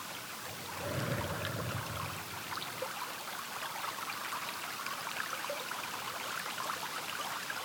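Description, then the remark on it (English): Gentle rippling water of a small countryside stream lined with big, green, moss-covered rocks flows steadily, a soft continuous babble with faint trickling detail, quiet, with no voices. “Can you hear the gentle ripple of the water in this lovely little stream? The water is flowing.”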